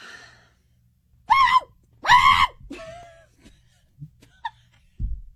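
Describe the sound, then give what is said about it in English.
A person vocally imitates a dog's bark with two loud, shrill, screaming yelps in quick succession, followed by quieter breathy sounds and a soft thump. “It's this loud screaming bark.”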